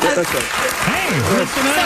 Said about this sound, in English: Hey, the crowd's a little like monkeys. They're going to cheer whatever Bill Maher says.